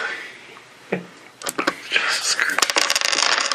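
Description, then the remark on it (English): Dice clatter and rattle across a table in a quick burst of sharp clicks as initiative is rolled in a game, after a single earlier tap; faint murmuring sits underneath. “I actually rolled a 7.”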